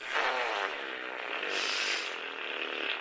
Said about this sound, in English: I'm sorry, we haven't been doing fart sounds in a while.